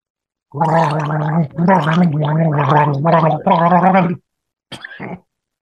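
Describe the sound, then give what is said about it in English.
A person gargles water, a loud, bubbling, voiced rattle that wavers in pitch across several long stretches, followed after a short pause by one brief final burst. “We want to see a close up of you gargling.”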